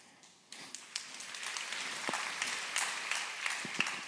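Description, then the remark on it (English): A crowd breaks into applause, a dense wash of many hands clapping that starts abruptly and holds steady at moderate loudness, with a few sharper individual claps standing out. “You clap, but you don't want to live like that.”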